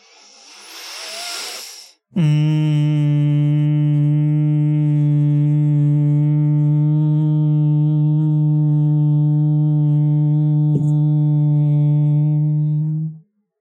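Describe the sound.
A person sitting up straight hums a long, steady, buzzing tone in imitation of a bee, loud, sustained for about eleven seconds after a brief breathy noise at the start.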